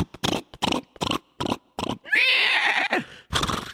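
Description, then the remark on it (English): A voice imitates a galloping horse with a quick run of rhythmic, breathy clopping sounds, breaks into a high, strained whinny-like cry, then returns to a couple more clops, fairly loud. “And finally, the horse got on a straight road that wasn't so muddy, and he started to gallop as quickly as he could.”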